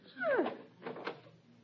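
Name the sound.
door being opened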